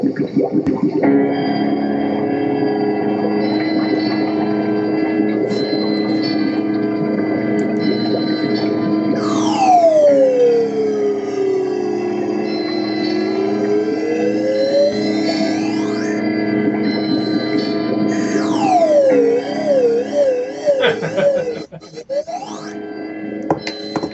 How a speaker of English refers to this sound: I thought that the slide whistle underwater was just too much for it to handle. Because that's what the opening movie sounded like. The opening of the movie sounded like this.